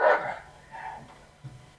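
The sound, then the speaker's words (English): Dogs bark: one loud, sharp bark, then a quieter, shorter bark a moment later, with a faint low yip at the end. No one speaks. “These are smart dogs.”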